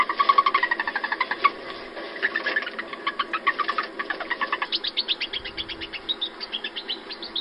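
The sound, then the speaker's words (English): A singing mouse makes a rapid series of high, thin chirps repeating in steady trills, bird-like, rising into faster pulsed bursts toward the end, with no voices present. “I mean, it's a mouse that's making vocalizations. Yeah, it's a chirping mouse.”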